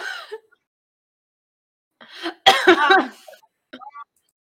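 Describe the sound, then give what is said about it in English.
A short fit of harsh coughing, two or three rough bursts in quick succession, preceded and followed by brief murmured vocal sounds and throat noises. “Oh, coughing still. I keep coughing still.”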